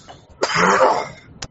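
A single sneeze bursts out suddenly, a loud, breathy, hissing explosion lasting under a second and followed by a short, sharp sniff-like click, with no talking.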